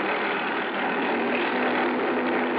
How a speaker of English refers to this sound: I spotted Rollins' cruiser in one of the coves, and the pilot set me down nearby. A dinghy with an outboard motor came over from the boat.